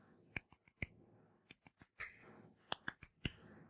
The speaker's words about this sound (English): And hey, guess what? I made it. Give me a round of applause right fucking now. I deserve a, matter of fact, I'm gonna give myself a round of applause.